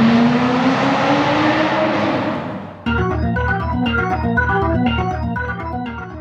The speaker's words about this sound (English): I don't think we have to worry, Red. This car can outrun anything on wheels. Let it out.